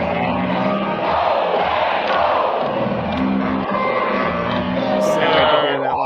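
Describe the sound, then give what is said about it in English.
A huge stadium crowd of about 79,000 people chants and roars in unison, a dense, loud wall of voices that holds steady throughout with rhythmic swells and a few sharp whoops rising above. “Oh, I just love screaming that with 79,000 of my.”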